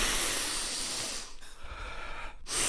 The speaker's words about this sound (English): Just breathing in all of their desperations.